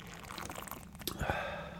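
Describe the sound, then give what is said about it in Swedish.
A short pour of Brönnums schnapps (Aalborg) into a glass, about a third of a glass: a gurgling trickle lasting about a second, followed by a faint clink and a steadier splash toward the end. “Jag har en Brönnums snaps här så vi kan få prova. Vi kan ta en tredjedel.”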